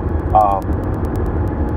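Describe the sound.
A steady low rumble of a car engine and road noise fills the cabin, constant, with a brief tonal voice-like sound near the start.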